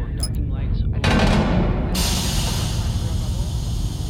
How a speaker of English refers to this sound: Venting airlock. It's gonna be loud.